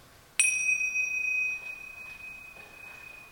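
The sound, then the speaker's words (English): A single bell is chimed once during a moment of quiet reflection, giving a sharp, bright onset and a clear, ringing tone that sustains and slowly fades over several seconds, with no talking. “And so as I chime the bells and we let joy expand our hearts, let's just bask in the solitude of the quiet.”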